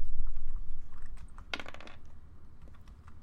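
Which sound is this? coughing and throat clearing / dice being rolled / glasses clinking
dice being rolled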